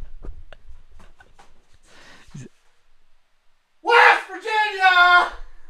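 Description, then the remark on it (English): Faint shuffling and thumps as a person runs across a room away from the microphone, then a single loud, drawn-out scream as loud as they can, raw and strained, from across the room before cutting off. “Okay, I ran across the room and then screamed as loud as I could.”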